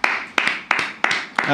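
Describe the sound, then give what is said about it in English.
Five sharp hand claps at a steady, even pace, each crisp and loud, with a continuous murmur of voices running underneath. “We don't usually clap there.”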